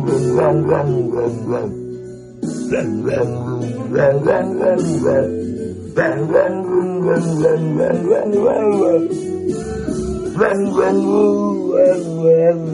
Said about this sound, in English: this dog, it sounds like he knows the lyrics to …